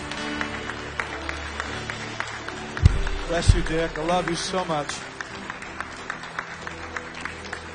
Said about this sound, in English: Put your hands together. Come on, make some noise. Make some sound. We love this couple. They are absolutely awesome.